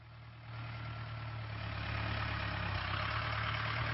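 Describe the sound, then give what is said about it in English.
A tractor's heavy engine idles steadily with a deep, continuous rumble and a low droning hum, growing slightly louder after the first half second and staying constant without any voices. “on the tractor outside and then inside”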